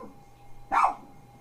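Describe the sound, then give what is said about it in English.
A single short, high-pitched dog yip rings out clearly against a quiet background with a faint steady hum, lasting only a fraction of a second; the dog is reacting to a weather radio alert going off. “Over the dog yipping?”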